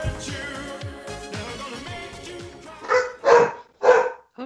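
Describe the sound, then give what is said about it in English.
Three loud, sharp barks from a pet dog come in quick succession near the end, following a stretch of music playing in the background. “My dog has opinions about that.”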